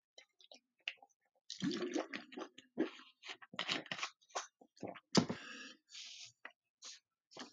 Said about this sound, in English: Excuse me, I'm going to grab a drink of water.